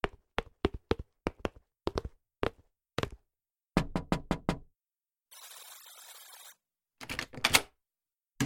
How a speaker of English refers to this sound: Go ahead, I'll knock on the door.